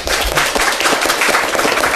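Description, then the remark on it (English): A crowd applauds the six panelists at the close of a panel discussion, many hands clapping at once in a dense, continuous crackle of sharp impacts that stays loud and even throughout, with no voices rising above it. “How about a round of applause for the six panelists?”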